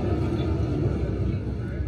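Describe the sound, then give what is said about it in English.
A heavy truck rumbles past outside, a steady low engine drone that stays fairly loud and constant through the moment, with no clear rise or fade. “Wait, let's let this truck go by.”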